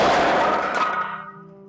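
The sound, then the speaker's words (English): A sudden loud bang from a safety control rod, attached to a string and motor and automatically triggered by rising radiation during Fermi's experiment, slamming into place: a single sharp metallic impact that rings out and slowly fades, leaving a low steady hum behind. “The scientists realized that the sound had come from a safety control rod attached to the string and motor, which had been automatically triggered by the rising radiation.”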